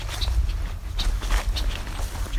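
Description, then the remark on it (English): Male and female red-winged blackbirds give a handful of short, harsh check-check calls at irregular intervals over a steady low outdoor rumble. “And their check-check calls. Both male and female.”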